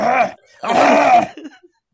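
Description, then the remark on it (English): A voice imitates Poseidon's constant harsh, hacking cough in two rough bursts, the second longer and raspier, followed by a brief sputter, loud. “Sounds like you're trying to start a really old lawnmower.”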